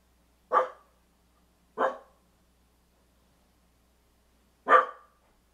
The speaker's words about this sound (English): She's going to start barking again, too.